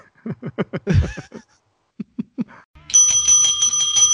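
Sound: bell ringing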